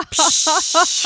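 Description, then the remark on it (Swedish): A voice imitates a spray can, making a loud, steady hiss that runs about a second after a brief pause, with several short voiced pulses sounding underneath it. “Och då så sa du så här, du kan få vara med och lyssna när jag sprayar. Ja, och så bara hörde man så här.”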